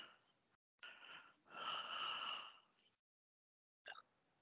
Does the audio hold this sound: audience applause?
no